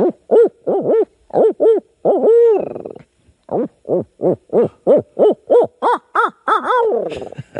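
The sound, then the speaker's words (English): A person imitates an owl, belting out a loud series of quick rhythmic hoots with drawn-out wavering calls mixed in, a brief pause midway, and a long trailing hoot at the end. “He asked me why I don't owl hoot when we go.”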